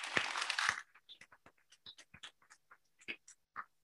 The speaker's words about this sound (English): just by applause, how many service dog handlers are in the room today?